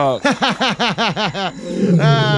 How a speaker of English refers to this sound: No! A lion! Let me grab my pistol to fend him off.